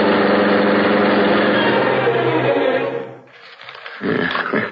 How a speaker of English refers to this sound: As the great car roared into life, a section of the wall lifted in front of it. The car turned into the street. Then the section of wall closed automatically as the gleaming black beauty sped into the darkness.